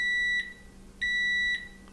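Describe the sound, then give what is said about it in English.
Two steady electronic beeps, each about 0.4 seconds long and spaced a second apart, from a power wheelchair backing up in an apartment; the tone is high and clear with a faint hum underneath and no talking. “Did that make a noise? Yeah, when it turns on. And look, it's like if you want to back up, you go.”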